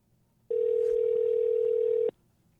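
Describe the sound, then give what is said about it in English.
A telephone dial tone from an outgoing call to the marketing manager for Ford Ranger: one steady, mid-pitched electronic tone holding for about a second and a half before cutting off abruptly, with no voices. “the marketing manager for Ford Ranger, let's give him a call.”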